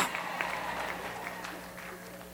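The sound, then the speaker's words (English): A church audience imitates sheep at the preacher's request, many voices bleating "baa" at once in a steady, overlapping wash of sound that holds at an even loudness for a couple of seconds. “Let's just see if you sound like a sheep.”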